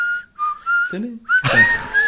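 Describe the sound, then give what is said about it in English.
Someone whistles a football chant tune: a few sustained notes and a short dip, then the last half second grows louder and noisier with breathy, rushing sound around the tone. “That's me whistling, it's coming home.”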